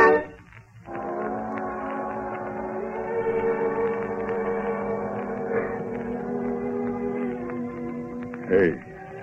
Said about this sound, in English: Is that Limey's boat whistling? Yeah. He tied up at the landing early this morning.